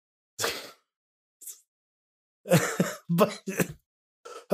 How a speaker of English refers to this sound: all I hear is you just like unintelligible screaming on my because I'm coughing my fucking lungs out. It just sounds insane. It sounds like someone is literally throttling you right now.